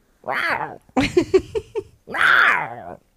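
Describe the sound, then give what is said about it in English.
A person imitates a cougar's growl with two drawn-out, wavering snarls around a burst of short choppy sounds, loud with no other talk. “No, that was about a cougar.”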